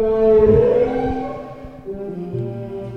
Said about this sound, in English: On a windswept escarpment, on a hillside outside the Sunshine Coast hamlet of Mullaney, the sound of whale song can be heard.